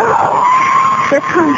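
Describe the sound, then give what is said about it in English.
A man screams in pain at a children's pool, one loud, sustained high-pitched wail held for over a second, breaking briefly near the end before continuing. “You just saw him screaming?”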